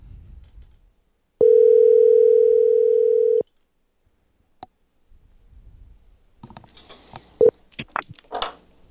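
A loud, steady telephone tone holds for about two seconds, followed by a lone click and then a quick, uneven series of short beeps and clicks as a phone is dialed to call a friend for an interview from a recording studio.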